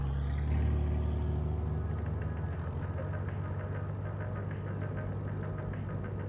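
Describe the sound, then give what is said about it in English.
A Jeep engine is started with a key and catches with a brief surge, then settles into a steady rumbling idle with a faint rhythmic ticking, holding a low, even drone throughout with no voices, as the Jeep heads out of a parking garage. “He turned the key. The engine cleared its throat. The Jeep headed out of the parking garage.”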